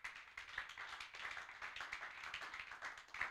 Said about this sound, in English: Give God a clap of faith.